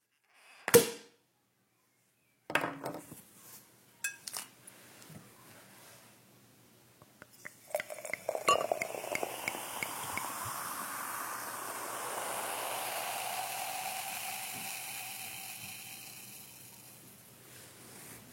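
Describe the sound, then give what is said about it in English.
A brief clink, a few handling knocks, then a steady pour that hisses and fizzes for about ten seconds as drinks are topped up in glasses at Christmas, with no talking. “Should we top up our glasses and then launch into our festive selection?”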